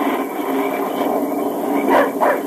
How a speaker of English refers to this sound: Keep that dog quiet. He smelled game. I don't care what he smells. Quiet him. Quiet, Dan. Quiet. Hush up.